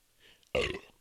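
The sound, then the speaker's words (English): A single loud burp erupts abruptly after a quiet moment, a rough, throaty belch lasting about half a second before trailing off. “Oh, I just burped so hard.”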